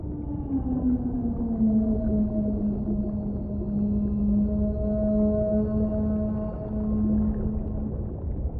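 A long whale song call with a steady, slowly gliding low tone and rich harmonics, holding for several seconds over a constant underwater rumble, with no voices.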